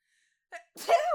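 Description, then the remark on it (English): A single sneeze: a quick sharp intake of breath, then a loud, explosive burst of air that trails off into a brief nasal tone. “Bless you.”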